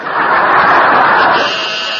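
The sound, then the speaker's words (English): A harsh, raspy buzzer drones steadily for about two seconds, loud and unbroken, easing slightly in level toward the end. “Is that the buzzer?”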